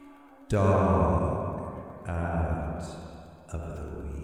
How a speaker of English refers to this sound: Okay, give me some echo effect.